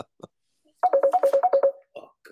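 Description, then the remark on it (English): A phone rings with an incoming call, a quick electronic ringtone of eight short beeps alternating between two pitches in a steady rhythm, loud, with faint brief noises before and after. “Oh, you got a phone call.”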